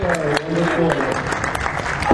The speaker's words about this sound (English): I want to give a big round of applause for our family.